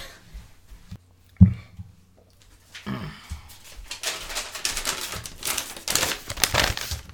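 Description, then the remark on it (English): Paper notes rustle and crinkle, starting with a few soft handling sounds and a sharp thump, then building into a dense, continuous crackling of sheets being shuffled and crumpled. “Paper rattling noises.”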